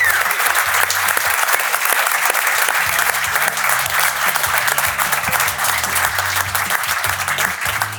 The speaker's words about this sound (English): That's a good round of applause.